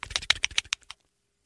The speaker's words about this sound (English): You hear him tapping his keyboard.